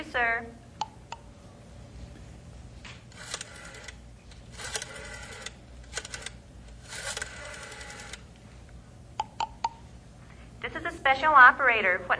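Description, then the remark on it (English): A rotary telephone being dialed: several separate whirring, ratcheting bursts with sharp clicks between them, fairly clear, with brief voice sounds at the start and end. “Operator, what number are you dialing, please?”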